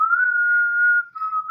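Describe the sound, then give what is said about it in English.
A short whistled melody, Proto Man's whistle from a Mega Man video game, plays on its own: a clear, steady high note held for about a second before briefly dipping and rising again, fairly loud with no talking. “But, tell me, you're playing a Mega Man core game, and all of a sudden you hear that, seven bars of whistle?”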